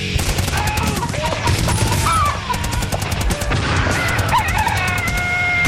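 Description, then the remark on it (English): A short jingle made by a listener during the show, built on loud, nonstop rapid gunfire, like machine-gun fusillades, layered with warbling tones and what sounds like occasional barking, dense and intense from start to finish. “All right, then let me give you a new jingle.”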